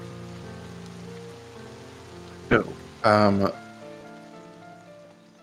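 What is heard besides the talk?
pouring rain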